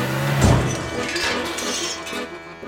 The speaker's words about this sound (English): He crashed his car into the gates over and over until he did it. He created a way in.